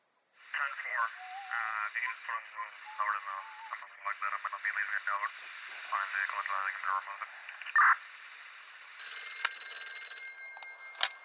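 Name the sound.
telephone ringing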